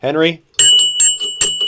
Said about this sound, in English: Let's give you a bell ring.